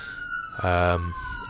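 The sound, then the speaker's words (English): A fire truck passing by again, its siren holding a steady high wail, broken midway by a short, loud, buzzing blast of its deep air horn that lasts about half a second. “Oh, here comes the fire truck again.”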